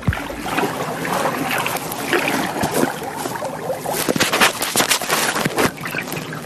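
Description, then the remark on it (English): Continuous sloshing and splashing of cold water around a paddled kayak, with irregular bursts of louder paddle strokes and drips, no voices. “Just relax on a nice kayaking adventure. And the nice cold kayaking water.”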